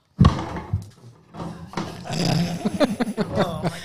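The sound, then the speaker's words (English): A chair bangs down hard with a sudden loud thud near the start, followed by a few lighter knocks and rustling clatter, with muffled voices mixed in. “Watch out for your chair. Well, it's my fault. I'm sorry.”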